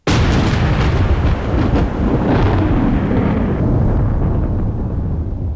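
A tremendous explosion shakes a building: a sudden blast that swells into a loud, deep, continuous roar and rumble lasting several seconds, with crackling debris above it and no voices.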